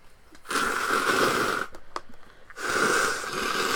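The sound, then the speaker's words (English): Two long, forceful nose blows, each a loud, rough burst of breathy noise lasting about a second, separated by a short pause with a faint sniff or two. “I need to blow my nose.”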